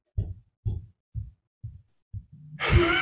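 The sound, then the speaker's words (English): Heavy footsteps running upstairs in a house: about five dull, low thuds at a steady pace, followed by a louder, noisier rumbling burst. No one speaks. “No, just elephants running. Elephants. Running upstairs.”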